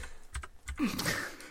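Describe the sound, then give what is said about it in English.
Keys clack on a computer keyboard in a quick, irregular patter of crisp taps as someone types into a search box without looking, with a soft rustle of background noise creeping in toward the end. “I just typed it in without looking to check that I was actually typing into any kind of search box.”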